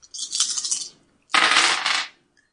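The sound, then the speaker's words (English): Dice are rolled in a game to make a careful roll, rattling and clattering in two bursts, each lasting close to a second with a brief pause between, a bright, rapid tumbling of small hard pieces with no voices over it. “I have rolled, but you tell me.”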